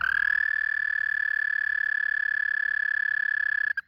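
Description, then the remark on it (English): A cane toad's mating call: one long, steady, high-pitched trill held continuously for nearly four seconds, loud and close, ending abruptly with a brief final pulse. “It's like a little trill. Yeah. They do like a very cute little trill.”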